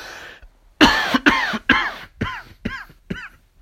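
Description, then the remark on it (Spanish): A loud fit of coughing from a person who is ill, recorded at 1 a.m.: about seven harsh coughs in a row, the first few strongest and raspy, the later ones tapering off slightly, with no talking. “Pero, ay, espérenme que no sé por qué estoy tosiendo tanto.”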